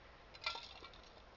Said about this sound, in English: Yeah, you get a vacuum sealed bag, and I have all these fragile jars. You can hear this.